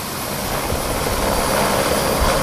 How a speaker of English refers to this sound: now go for a tour by helicopter over the Coorong to see the extent of the acid sulphate contamination of soil along the edges of Lake Albert and Lake Alexandrina